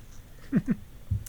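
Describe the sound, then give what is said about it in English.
A quiet sip of a drink: two soft, quick swallowing gulps in a row, followed by a dull low thump, like a cup being set down. No one speaks. “Let me take a sip.”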